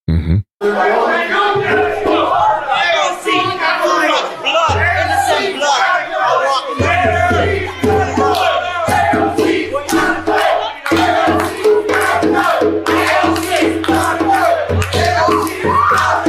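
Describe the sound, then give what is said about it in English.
A large crowd at a rally in Astoria, Queens yells and chants together, a dense roar of many voices with rhythmic shouted bursts, occasional whoops and clapping, loud and continuous throughout. “So they're now chanting.”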